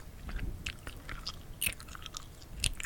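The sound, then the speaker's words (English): Wet, smacking gum-chewing noises with the mouth open, a quick irregular series of sticky clicks and squelches, fairly loud with no talking. “If you're going to chew gum, first of all, don't. But if you do, don't chew with your mouth open. Do not make these sounds when you chew gum.”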